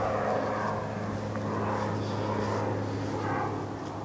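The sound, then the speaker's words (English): A jet plane taking off from nearby SeaTac airport roars overhead above a cemetery, a steady, broad rumbling drone that holds at an even level throughout with a low hum underneath, and no voices. “The drone of Interstate 5 over the ridge is constant, and every 15 minutes a jet leaves nearby SeaTac.”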